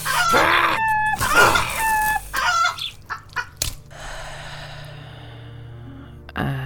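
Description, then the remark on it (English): A loud chicken crows twice like a rooster in harsh, strained bursts, followed by a few squawking clucks and a scuffling rustle, then a final short squawk at the end. “That's it, you filthy bird.”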